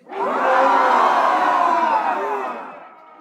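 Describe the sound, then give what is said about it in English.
A crowd of voices lets out a long, loud group roar imitating a lion, a dense, rough shout swelling quickly and holding for about two seconds before fading out. “I'm going to count this down, and I want to hear the most guttural lion roar that you can possibly produce right now.”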